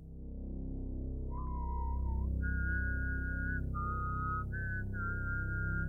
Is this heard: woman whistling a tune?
yes